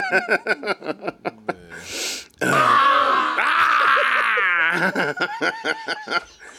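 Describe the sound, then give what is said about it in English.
A person imitates a werewolf roar: short chuckling vocal bursts and a breathy hiss, then a loud, rough, sustained growling howl with wavering pitch that breaks back into laughter. “Is that roar at the end that I love?”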